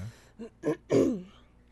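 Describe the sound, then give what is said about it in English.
Someone clears their throat in a few short, rough bursts that build to a longer, harsher rasp at the end, with no talking. “I told you, you can't clear your throat.”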